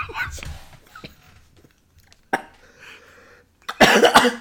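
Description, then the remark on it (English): Someone coughs after soda water goes down the wrong way: a single sharp cough, a pause with quiet throat noises, then a louder harsh burst of two or three coughs. “Oh dear, I nearly had some soda water go down the wrong way.”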